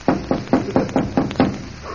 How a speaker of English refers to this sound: Shall we knock?